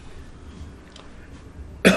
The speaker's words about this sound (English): I had to cough on that.